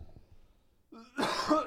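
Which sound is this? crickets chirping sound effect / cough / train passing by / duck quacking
cough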